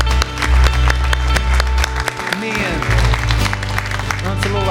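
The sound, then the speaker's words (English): An audience applauds for the Lord after a church prayer, with dense, steady clapping that fills the whole few seconds, while a man's voice speaks briefly over the noise. “Can we give the Lord a hand?”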